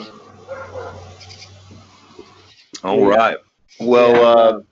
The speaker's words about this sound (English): So the barking you hear is one of our new roommates.